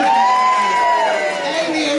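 A crowd cheers and whoops loudly, with sustained high-pitched shouts riding over a steady wash of clapping that holds at full volume for two seconds.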